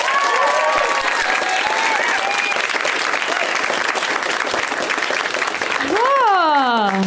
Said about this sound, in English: Just grateful to be with you guys tonight, and we got an awesome lineup of comics in the back, and they can hear you. And let's just one more round of applause for those guys.